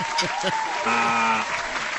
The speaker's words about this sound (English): let's just give him applause for fucking a big word.